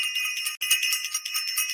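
A bright, high-pitched bell rings steadily and loudly for a couple of seconds, its shimmering tone briefly cutting out once before resuming, with no voices present.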